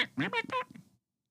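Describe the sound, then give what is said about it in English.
A voice imitates crows squawking: three quick, harsh, nasal bursts in a rapid run, fairly loud, lasting under a second before quiet. “One of them was like squawking back real bad.”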